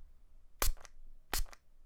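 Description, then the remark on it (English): Two short, sharp spritzes from a spray product being demonstrated on the radio, each a quick hissy burst trailed by a softer second puff, spaced about half a second apart with quiet in between. “Here, I'm even gonna, it's a spray, so I'm gonna prove that it's real.”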